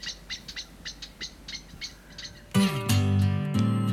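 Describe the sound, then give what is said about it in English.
A blackbird calling with a rapid, evenly spaced series of short, sharp high notes, about a dozen, before loud sustained tonal music abruptly takes over and drowns them out. “When the blackbird made a noise, I knew someone had come in the wood.”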